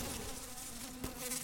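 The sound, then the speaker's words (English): A steady, droning buzz of a giant black cloud of mosquitoes of all shapes and sizes swirling around a room and up out the ceiling, dense and continuous with a slight wavering pitch, with no voices over it. “This giant black cloud of horrifying mosquito monsters of all shapes and sizes.”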